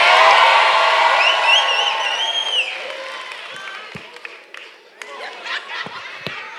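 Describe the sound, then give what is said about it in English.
A large audience erupts in loud screaming and cheering at the speaker's request, a dense roar of many voices with shrill whoops on top, gradually fading over several seconds as scattered claps and shouts linger. “Can y'all scream at me for 2 seconds, please?”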